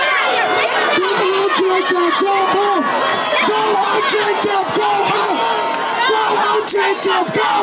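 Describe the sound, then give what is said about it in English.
A large, loud crowd at a rally boos and jeers a mayor, with rhythmic shouted chants rising repeatedly above a dense wall of angry yelling that carries on for the whole stretch. “And he was still booed and still jeered out of that rally.”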